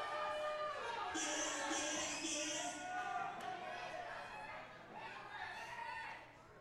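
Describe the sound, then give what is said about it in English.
A large crowd at a wrestling Tag Team Championship match loudly chants the jeering taunt "Pink Gang sucks" in unison, voices echoing in a steady, continuous roar that eases slightly toward the end. “Wow, listen to the crowd yelling, Pink Gang sucks.”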